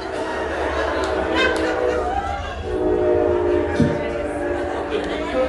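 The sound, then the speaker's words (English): A loud train rumbles steadily past on tracks right behind the building in Centralia while its horn blares in long sustained tones over the heavy rolling noise of the cars, filling the whole stretch without a break. “They were right behind the building, so that was very loud with trains going through, but that's fun.”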